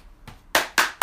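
Sharp hand claps: one soft clap, then three loud, crisp claps in a quick, steady rhythm. No one speaks.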